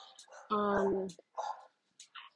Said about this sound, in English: uh-oh, sorry, real life is happening. You hear my dogs.